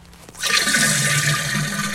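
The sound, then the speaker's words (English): A toilet flushes, starting with a click and swelling into a loud, steady rush of swirling water that keeps going to the end, with no one talking. “I was on the toilet like a half hour shitting all of this water, and then I took a break and I came back.”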